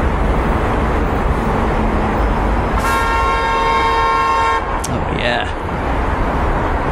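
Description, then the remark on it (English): A single steady car horn blares for about two seconds over a constant roar of city traffic, followed by a brief high squeak as the rumble of the street continues, played from the Sleep Noise City Sounds Alexa skill. “And beep.”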